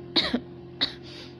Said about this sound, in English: My head feels so light and so heavy at the same time. I cough again.